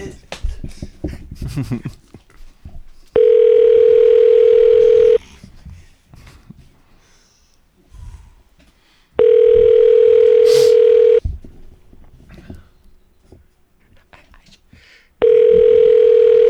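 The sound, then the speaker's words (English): A phone's ringback tone sounds three times during a call to a business to apologize, each a steady two-second buzz separated by pauses, loud, with faint background movement and murmuring between rings. “Okay, let me call and apologize for you. I have his phone.”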